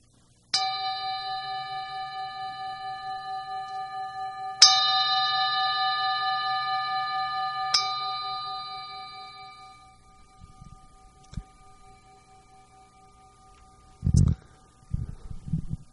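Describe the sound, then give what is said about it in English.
A meditation gong is struck three times, a few seconds apart, each strike blooming into a bright, sustained metallic ring that slowly fades into near silence, followed by a few soft bumps and rustles. “So I'd just like to punctuate that with a little gong”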